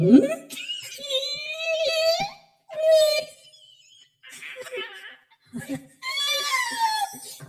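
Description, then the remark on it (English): A child's voice imitates a whale with long, wavering, high-pitched moaning calls that glide up and down, repeated in several drawn-out bursts separated by short pauses. “That's a good whale impression.”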